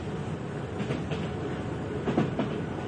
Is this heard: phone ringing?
no